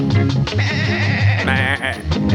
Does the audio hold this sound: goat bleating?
yes